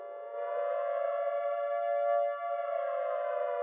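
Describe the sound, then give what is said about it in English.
A Portland air raid siren, sounding its weekly Monday noon test, wails in one loud, sustained tone, its pitch slowly climbing and holding steady, with no voices present. “Of course, weekly air raid alarm testing, each and every Monday at noon, wailing across the city, helped to reinforce this commitment.”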